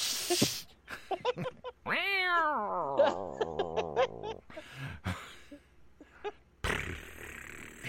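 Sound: cat hissing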